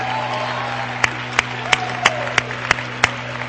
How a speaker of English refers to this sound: Praise God. Somebody clap your hands and shout hallelujah with me.